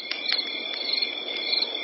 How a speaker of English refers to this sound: And after dark, of course, crickets.